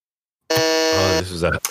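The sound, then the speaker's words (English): A loud, harsh quiz buzzer blares for under a second after a short silence as a contestant buzzes in first to answer a wrestling trivia question, its dense harmonic rasp overlapped by a voice starting to speak. “buzzes in first.”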